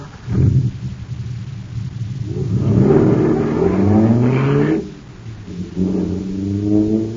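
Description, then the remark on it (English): A car engine, just filled with super fuel at a filling station, revs hard, its droning pitch climbing in a long rising surge, dropping off, then revving up again. It is loud, with no voices. “Wow, this jet car is supercharged now.”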